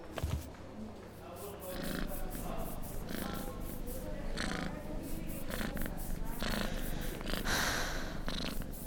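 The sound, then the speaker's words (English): A cat purrs, a steady low rumble with a rhythmic in-and-out pulse of breaths that continues unbroken for the full length. “Of course not, you're a cat.”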